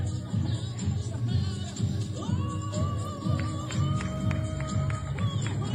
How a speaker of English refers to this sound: Why are they clapping? Shut up. Yeah. Oh, no, it's a funeral. Oh, yeah. My God. That's a funeral.